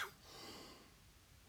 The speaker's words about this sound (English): As I choke up, thinking about it. Excuse me. There you go. Live coughing.